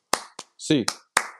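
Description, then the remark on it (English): Four sharp, loud hand claps in an uneven rhythm, part of an eight-clap sign-off cheer for UCLA college basketball, with a short voiced shout or sung note between the second and third claps. “Eight clap time, baby.”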